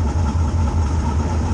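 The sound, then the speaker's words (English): A race car engine idles loudly and steadily before launch at the start, a deep rumbling drone with a constant low throb and no voices over it. “You keep the brakes down to keep the nose pinned. Keeping the nose pinned. As soon as they go green, ride to brake, feather it out, get ready to fucking jam it.”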